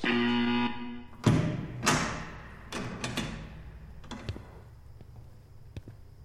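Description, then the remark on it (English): Several sharp knocks on two-way glass, a mirror on the other side, in viewing room 2, land at an uneven pace, a couple of louder raps followed by lighter taps, over a faint low hum with no voices. “Sir, please don't knock on the glass.”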